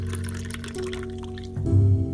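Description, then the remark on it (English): Liquor is poured into a shot glass at a bar, a steady trickling pour whose tone climbs as the small glass fills, lasting about two seconds with no voices. “I grumbled in unintelligible no comment as he retrieved a bottle of Dortmunder from the cooler, set it in front of me, and then poured a shot.”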